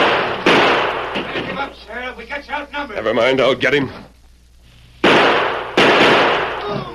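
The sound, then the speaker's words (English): Gunfire in a shootout as a sheriff fires on Duke's men: a loud, sharp gunshot cracks out, then two more shots ring out close together after a pause, with a man's urgent speech between them. “If it's Duke's crowd, I've got some shooting to do.”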